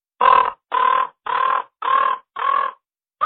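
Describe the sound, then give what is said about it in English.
A person imitates a raven's call with a series of harsh, throaty caws, about five or six evenly spaced in steady rhythm, loud, with no other sounds around them. “So and this is what the raven sounds like.”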